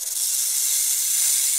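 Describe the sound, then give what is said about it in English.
A caged snake hisses in one long, steady, breathy stream that stays loud for under two seconds, with no voices around it. “Well, you see, there are some animals there, too, and I got kind of scared of the snake.”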